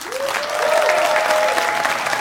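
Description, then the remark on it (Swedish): An audience claps steadily to show they think an idea is good, a dense wash of many hands applauding at an even, sustained volume for a couple of seconds, with a faint whistle-like tone running through it. “Applådera ni som tycker det är en bra idé.”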